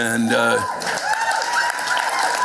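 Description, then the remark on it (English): A voice trails off, then a sparse, lukewarm round of applause follows from a live audience at the Capitol Theater in Clearwater, Florida, scattered clapping mixed with crowd murmur at a steady, moderate level. “And you can hear by the half-hearted applause that a lot of people don't fucking believe that.”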